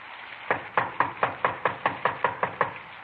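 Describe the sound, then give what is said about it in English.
A rapid series of about ten sharp knocks on the wooden front door of a small redwood house in the San Fernando Valley, in the rain, evenly spaced, with no voices over them. “Better try it again.”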